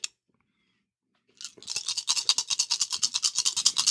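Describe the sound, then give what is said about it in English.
A sharp click, then a pause, then a steady, fast rattling of dice being shaken for a medical roll in a game, with bright, evenly spaced clacks that continue to the end. No one speaks. “You're rolling dice, so I guess that's a yes.”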